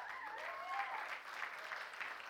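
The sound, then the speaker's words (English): An audience claps steadily for people called to come down to the front, a dense wash of many hands at a fairly even level, with a faint voice or whoop rising briefly over the applause. “Yeah, give them a good hand clap.”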